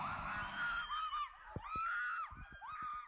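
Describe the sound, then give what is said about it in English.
A party crowd screams excitedly as The Shape of Water is announced as the Oscar Best Picture winner, loud high-pitched shrieks and whoops rising and falling over one another, broken by several sharp percussive bangs in the second half. “Can you tell we were excited? That was a short video I took at the party.”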